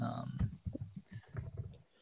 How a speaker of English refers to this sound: I'm just going to trust that everybody else trusts that this is what I'm doing and I'm just not typing random stuff.